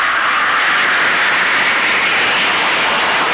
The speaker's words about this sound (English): A DC-8 starting 50 yards away produces a noise level of 120 decibels, but it passes.